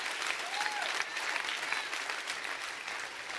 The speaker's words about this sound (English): I know you're clapping, but I think I just heard a clap from heaven.